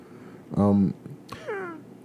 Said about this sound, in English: I don't know what that was. Sounded like a cat.